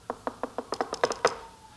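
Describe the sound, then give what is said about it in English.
Knocking on a door: about nine sharp raps, four evenly spaced at first, then a quicker run of knocks, clear with no one talking. “You know, the Bible says that he stands at the door and he knocks.”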